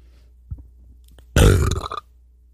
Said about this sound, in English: Wow. That was a pretty decent burp. There was like something in the back of that burp that made it any more impressive. Yeah, those were, Pepperidge Farm cheddar goldfish.